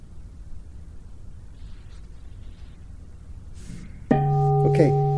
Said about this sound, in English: So I'm going to have you set your intention as a speaker or as a listener following the instructions, and I'll ring the bell to start in 10 seconds.